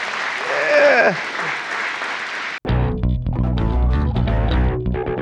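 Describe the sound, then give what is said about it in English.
A burst of crowd applause with whistles and cheers rings out for a couple of seconds, then cuts abruptly into loud, bass-heavy music that plays on to the end. “All right, Timmy, get some applause on the way out.”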